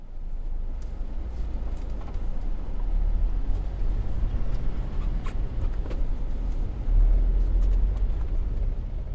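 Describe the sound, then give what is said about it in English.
Steady low rumble of a car driving the last stretch of an ice-covered gravel road to a summer house cabin at minus 5 degrees Celsius, with constant crunching and rattling texture and occasional sharper clicks and bumps, recorded from a mic stand in the back of the car. “All right, this is driving to the summer house, the last quarter.”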